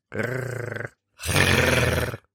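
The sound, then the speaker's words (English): A person does a platypus impression: two loud, growly vocal bursts, the first shorter with a fluttering, purr-like pulse, the second longer, rougher and more roaring, with a short pause between and no talking. “Hope you're ready for the sickest platypus impression you've ever heard in your life.”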